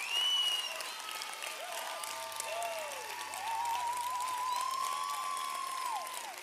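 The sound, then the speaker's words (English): A crowd applauds steadily for several seconds to honour the hosts, a dense wash of clapping with scattered whistles and cheers rising above it, holding fairly loud throughout. “I'm waiting till the clapping stops so you can hear what I'm going to say to you.”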